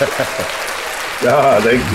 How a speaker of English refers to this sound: Let me get the applause for you.